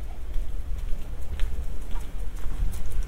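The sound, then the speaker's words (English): Faint, irregular ticking patter of the little feet of a small, very fluffy dog being walked, a few light taps scattered over a steady low outdoor rumble, with no one talking. “You can probably hear the little feet of a small, very fluffy dog being walked there to my right.”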